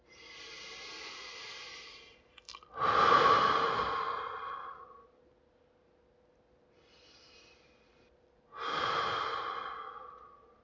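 Slow, deep breaths drawn in through the nose and pushed out forcefully through the mouth during a breathing exercise, each one a long, loud airy rush, repeated a few times with a quiet pause between the breath cycles and no talking.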